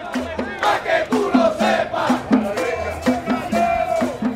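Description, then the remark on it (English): A large protest crowd of thousands marches through the streets of San Juan, Puerto Rico, many raising roosters into the air: a dense roar of many voices with rhythmic shouted chants rising and falling steadily throughout. “thousands of them from across the island took buses and carpooled into the capital, San Juan, and they marched.”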